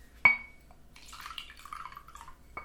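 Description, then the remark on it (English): A glass clinks sharply, then Gibson's Finest Rare whiskey glugs and splashes into it for about a second and a half, fairly quiet, ending with another light clink of glass. “And as we all know, there's Gibson's Finest Rare Whiskey.”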